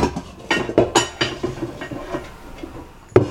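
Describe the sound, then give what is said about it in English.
An aluminum Whirly Popper stovetop popcorn popper clanks and rattles as it is handled and cranked, with about eight sharp, bright metallic knocks at an uneven pace, followed by a short lull and one final loud clank. “It is a kettle, and you can hear it, made out of aluminum.”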